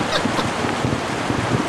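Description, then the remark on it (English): A storm sound effect: a steady, dense roar of rushing wind with a broad, hissing texture and slight surges, loud and unbroken throughout, with no voices. “Look, we got effects now. I see a storm brewing.”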